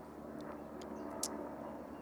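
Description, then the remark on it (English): An airplane passes overhead during an outdoor church gathering, a steady, low, even rumble that holds for the whole stretch, with a few brief, faint high chirps above it and no talking. “I'll just pause it as we wait for this plane to fly through.”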